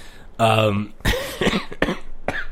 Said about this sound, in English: there's the coughing.